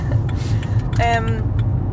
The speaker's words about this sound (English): Traffic. It's the Traffic Jam podcast now